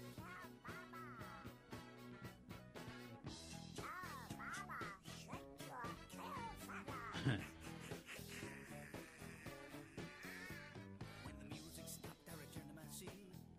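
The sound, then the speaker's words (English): An upbeat 1960s novelty dance song with a steady beat and backing instruments, while a cartoonish duck voice quacks and squawks out the melody, loud and up front throughout. “Yeah, the guy who did the duck voice got $50 and was not Clarence Nash, the original voice of Donald Duck in the Walt Disney cartoons.”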